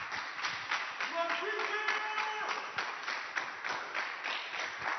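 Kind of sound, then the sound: crowd, audience clapping hands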